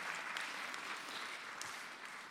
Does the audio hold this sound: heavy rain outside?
no